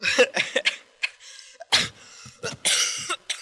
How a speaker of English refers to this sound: got to cough away.